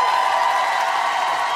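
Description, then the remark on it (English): A Philadelphia crowd applauds the president of the union in a steady, dense wash of clapping that holds at an even, fairly loud level throughout, with no voices standing out. “he has been working so hard and has given so much of himself that I would love for Philadelphia to give him a big round of applause.”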